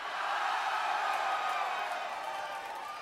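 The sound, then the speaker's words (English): A loud, rowdy crowd at a free-admission concert cheers and roars continuously, a dense wash of shouting voices and whoops with no pauses, holding steady before easing slightly toward the end. “Oh, it's all so rowdy when you get in free.”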